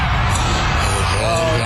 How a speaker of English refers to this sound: Boy, boy, listen to that crowd.